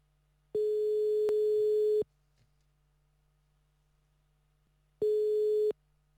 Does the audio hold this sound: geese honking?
no